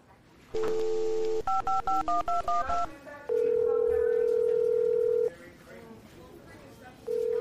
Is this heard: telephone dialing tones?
yes